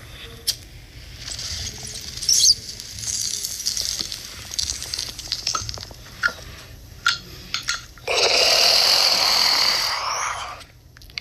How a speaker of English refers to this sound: Now that's a fucking bong hit.